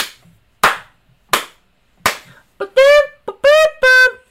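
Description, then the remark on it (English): Four sharp hand slaps, evenly spaced, followed by a buzzy, brassy trumpet note imitated by mouth, sung in a few short, loud bursts, given as a rating for a song. No one speaks. “So that was 4 slaps and a trumpet note.”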